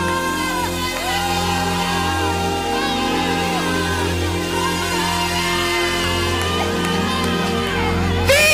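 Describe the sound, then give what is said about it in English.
A large crowd shouts and cheers together in shouts of victory during prayer and worship, a dense, continuous roar of many voices that stays loud and steady throughout, with overlapping wavering cries rising above the mass. “Shouts of victory.”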